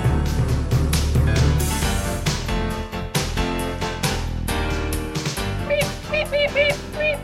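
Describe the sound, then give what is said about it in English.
Prairie dog calls: a rapid series of short, sharp, high-pitched chirps near the end, rising over a dense, loud wash of layered sound. No one speaks. “Now, if you spoke Prairie Dog, what you'd actually hear there is the introduction to our podcast.”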